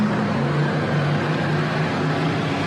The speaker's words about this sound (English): you can hear the roar of these vehicles